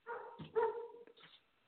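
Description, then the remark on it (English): A dog in a hallway barks in a quick run of about three sharp, throaty barks, the middle one loudest and drawn out, with no talking around them. “I almost got attacked by a dog in the hallway.”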